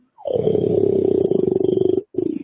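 A loud, rough bellow begins with a short growl and holds a low, throaty, pulsing tone for about two seconds, followed by a brief second burst. No one speaks.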